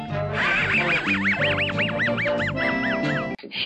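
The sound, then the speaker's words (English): The wheezing laugh of Mutley, the cartoon dog: a rapid run of about a dozen squeaky, rising-and-falling snickers over a steady buzzy background, loud throughout and cutting off abruptly at the end. “We need somebody to cue up the Mutley laugh here.”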